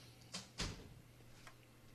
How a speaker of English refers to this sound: I hear that door.